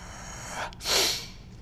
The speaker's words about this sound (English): What are you laughing at? That yawn.